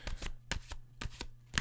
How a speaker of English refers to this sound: Anyway, I'm shuffling the cards. You can hear the shuffling sound.